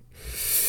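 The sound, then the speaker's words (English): A single breathy sneeze, a hissing rush of air that swells over a fraction of a second, with no talking around it. “God bless you.”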